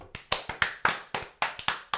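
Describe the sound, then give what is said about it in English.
A short burst of hand clapping: about nine sharp, crisp claps in a quick, slightly uneven rhythm, loud and distinct, with no voices. “Round of applause.”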